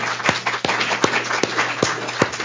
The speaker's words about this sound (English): This was a remarkable panel, not just in terms of the number of panelists, but the absolute quality of the presentations. I think you all deserve a round of applause. Thank you very much.